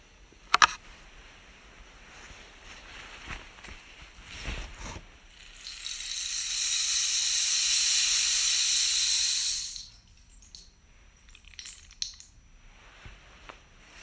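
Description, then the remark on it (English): A rain stick is tipped over, releasing a steady, bright, hissing cascade of tiny pellets that lasts about four seconds and then stops, framed by a few faint clicks and knocks. “Upend the rain stick.”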